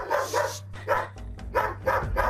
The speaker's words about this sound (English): A frantic dog in this aggressive state can be very dangerous because it can be very unpredictable.